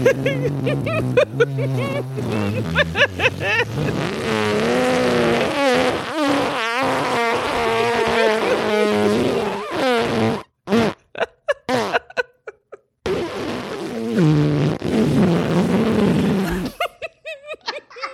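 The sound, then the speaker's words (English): A long, drawn-out fart noise, loud, with a buzzy, wavering pitch that stretches for several seconds before breaking into short sputtering bursts and a final trailing rasp. “doing the 3-minute fart into my casket, closing it, and then saying, "I'm out."”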